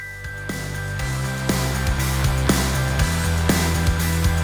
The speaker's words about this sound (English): There's a set of bells that ping-pong back and forth, pushing the beat along.